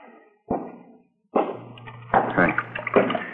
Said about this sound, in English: Want some toothpaste? Yeah. All right. There you are. Turn on the water tap, huh?